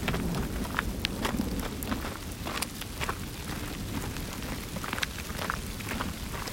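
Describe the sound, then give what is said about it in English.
Steady rain falls throughout, a dense hiss of drops with scattered sharper spatters standing out, over a low continuous rumble. No one speaks. “Yeah, the rain didn't want to wait.”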